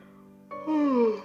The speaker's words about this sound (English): And that yawn. I think I'm going to sleep back.